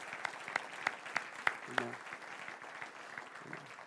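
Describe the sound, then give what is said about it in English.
A church audience applauds to honor visiting guests in the evening, in a dense, steady wash of clapping, with a few sharper, louder claps standing out early on and a brief voice calling out partway through. “And so before I do share my message that God has placed upon my heart, can we just tell them how much we love them and honor them tonight with just a great hand of clap?”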